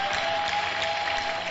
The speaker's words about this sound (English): Beautiful. Clap your hands properly because it calls for celebration.